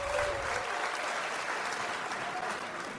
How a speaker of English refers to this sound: The crowd rumbles assent